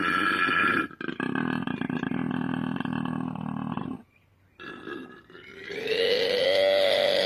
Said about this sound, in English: That's not a cute koala bear. That sounds like one's puking everywhere. That's what they sound like. It's amazing, isn't it? Such a guttural noise.